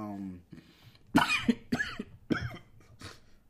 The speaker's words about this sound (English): sorry, dry mouth. Had to cough.